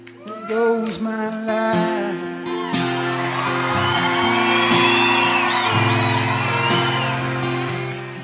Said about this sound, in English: And that spontaneous applause from the audience showing their appreciation to the writer, and the writer, in the end, sharing his life with complete strangers.